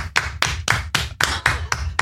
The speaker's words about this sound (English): Applaud him. Let's hear it for LRH.